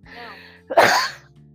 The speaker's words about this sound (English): And yes, I still have my cough. That's not going away anytime soon. Sorry, everybody.